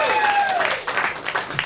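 A comedy show crowd applauds steadily, a dense wash of clapping with a few louder bursts, while a high whistle glides downward at the start, as a comedian is brought to the stage.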